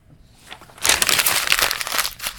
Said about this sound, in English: You hear that? That's me throwing away my notes.